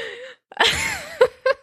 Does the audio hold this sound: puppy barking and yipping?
no